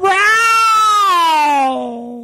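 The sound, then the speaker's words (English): A person imitates a cat with one long, loud, drawn-out meow that slowly slides downward in pitch and fades slightly at the end, with no other talking. “Very unearned house cat, that movie.”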